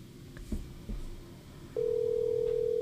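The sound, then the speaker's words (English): After a second or so of faint low rumble and handling noise, a steady telephone ringback tone of an outgoing call starts and holds loud and clear, with no voices present. “I hear a ringing.”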